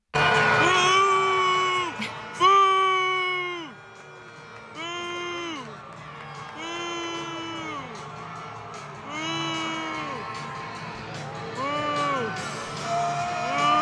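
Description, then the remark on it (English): A stadium crowd at Gillette Stadium booing in loud, repeated waves during a Chiefs–Patriots NFL game as a woman is shown on the Jumbotron. About ten sustained boos rise and sag in pitch, each one ending in a downward slide, with steady crowd noise continuing underneath. “up on the Jumbotron, whatever you want to call it, at a stadium, and the fans were booing her. So we have a little clip of it here.”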